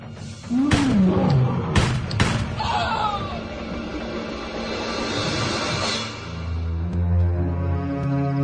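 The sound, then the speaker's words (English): A lion lets out a loud roar as three sharp gunshots fired at it crack in quick succession, followed by a lingering rumble and low sustained tones. “You killed that lion. Yep, shot it right between the eyes.”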